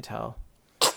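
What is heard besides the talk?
someone sneezing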